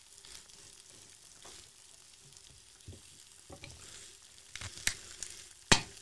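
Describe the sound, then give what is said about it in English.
Tomatoes and beans sizzle in a frying pan, the tomatoes just flipped after browning and the beans just added: a steady hiss with scattered crackles and a few sharp pops, the loudest snaps near the end, with no talking. “You'll listen out for the snap, crackle and pop.”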